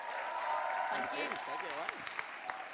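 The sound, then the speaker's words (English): An audience at a seminar claps steadily throughout to welcome a guest speaker, a soft, dense patter of many hands, while a voice speaks over the applause partway through before it begins to thin out. “So can we give her a massive round of applause?”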